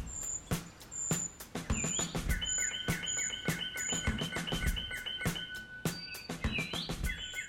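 High, thin bird calls repeat in quick, chirping series, loud, over a busy outdoor backdrop with frequent knocks and clunks. A treecreeper calling, heard during a bird race.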